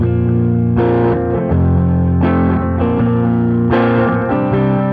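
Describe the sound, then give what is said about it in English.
Loud distorted electric guitar chords played through an overdrive pedal doubled with an Echo Dream pedal for a slapback delay, each strum trailed by a quick doubled echo, with several chord changes and no voices. “A little more of a delay effect on that one. I like to double them. It gives you kind of a slap effect.”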